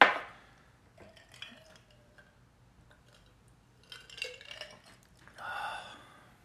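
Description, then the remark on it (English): Chicken Cock bourbon is poured over ice in a glass: a sharp knock opens, then ice clinks and ticks, with two brief splashing, gurgling pours near the end. No one speaks. “And yes, that's me pouring it on some ice because that's what I do.”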